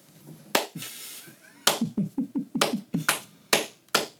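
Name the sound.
slow clap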